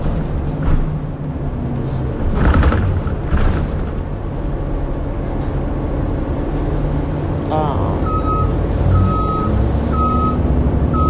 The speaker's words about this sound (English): Now, this is the bus driver, y'all. She is flying. She's blowing at folks. Lord, have mercy.